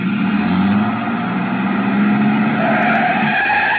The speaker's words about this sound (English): I started back toward the street when a man, a much larger man than Dupas, came out the side door and got into the truck. He turned over the engine and switched on the lights before I could get clear.